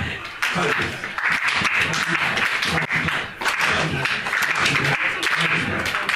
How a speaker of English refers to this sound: And then start clapping slowly.